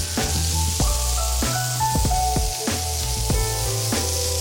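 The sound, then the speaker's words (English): Loud, steady sizzling of food being laid down in a hot pan, a dense hiss broken by a series of sharp pops and crackles, with no talking. “Is we're gonna lay this beautiful masterpiece down. You're gonna hear it sizzle, just like that.”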